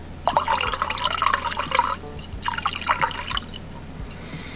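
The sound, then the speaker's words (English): Thick eggnog liqueur, a 21% alcohol drink that originated in Barbados, pours into a glass in two bursts with a short pause between, a gurgling splash that ends in a few light drips. No one speaks. “Let's get this poured into the glass, shall we?”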